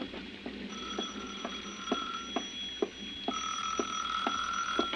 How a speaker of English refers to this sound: It was 6:05 when the phone rang again.